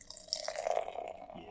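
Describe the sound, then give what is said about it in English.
A canned summer honey beer, brewed with honey and spices by Big Sky Brewing of Missoula, Montana, glugs and splashes steadily into a glass for a second or so, a continuous pour with a slightly rising ring and bubbly fizz, no talking. “And the pour.”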